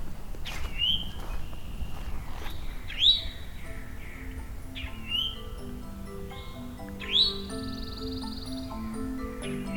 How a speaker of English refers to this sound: A male. Pine warbler in the background. Northern cardinal as well.